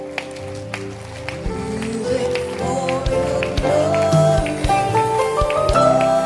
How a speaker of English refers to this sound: Clap your hands for them. Keep clapping for them. Don't stop clapping for them.